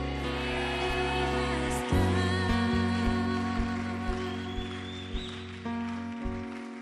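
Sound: hand clapping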